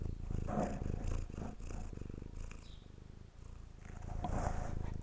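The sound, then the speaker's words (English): A cat purrs steadily for several seconds, a low rumbling vibration with a fast, even pulse that swells slightly louder toward the end, with no voices. “Do some purring.”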